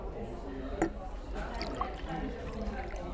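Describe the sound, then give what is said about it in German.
A half of wheat beer pours steadily into a glass for a few seconds, a soft continuous gurgle with a small clink early on, set against a low murmur of voices. “ein halbes Weisse bitte.”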